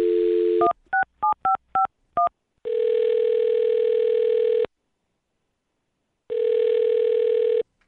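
A dial tone gives way to a quick run of touch-tone keypad beeps as a woman's phone number is dialed, followed by two long, steady ringback tones with a silent gap between them. No one speaks.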